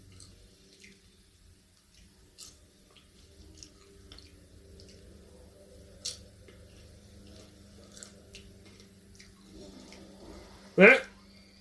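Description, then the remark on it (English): Water trickles and drips softly over a low steady hum, then a sudden loud splash bursts out near the end as something is spat from the water. “Something in the water is about to get him.”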